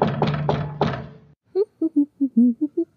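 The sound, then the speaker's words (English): Four heavy knocks thud on the door of the ladies' room in quick succession, then a pause and a string of short, rhythmic vocal sounds, like a voice mimicking more knocking. “So I walk over to the ladies' room. I'm like, it didn't take them long. Just start knocking.”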